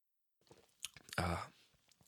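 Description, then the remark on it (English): Wet mouth sounds of someone taking a sip of a cold stout beer, with a short slurp and a louder gulping swallow in the middle, then quiet lip smacks. “We're going to take a sip first.”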